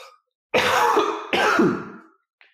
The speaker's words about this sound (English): Sorry, I really need to like cough.